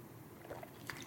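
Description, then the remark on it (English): A person takes a brief wet sip and gulp of water, with small liquid clicks and a soft swallow, quiet and alone without any talking. “And I'm going to have a drink of water real quick.”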